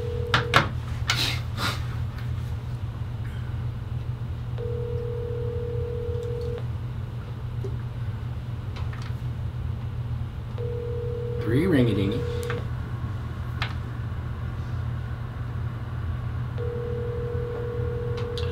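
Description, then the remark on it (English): A phone line ringing out: a few clicks, then a steady ringback tone repeating in two-second bursts with long pauses between, over a low constant hum, with no one answering. “All right, ring-a-ding-ding.”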